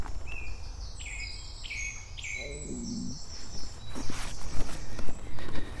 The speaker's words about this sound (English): I'm now heading into Chiddock, serenaded by song thrushes.